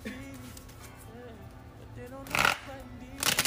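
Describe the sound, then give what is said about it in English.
Tarot cards being shuffled, two quick, loud riffling bursts of papery swishing near the end, over a faint, steady background hum with murmuring. “Damn, girl, you be shuffling the hell out them cards.”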